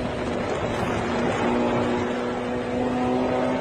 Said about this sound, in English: All right, pretty much as I expected. No car should be shaking this much. Yeah, you've got like a fucking tire like coming loose.